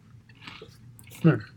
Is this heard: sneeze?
no